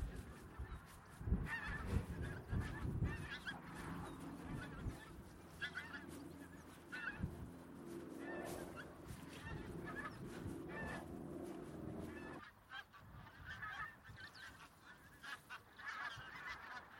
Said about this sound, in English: The call of wild geese, pink-footed geese, which there are thousands here, I think, out across this marsh. Oh, what a wonderful spot.